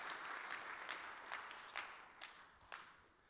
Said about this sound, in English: All right, thank you. Let's give a round of applause for what God is doing.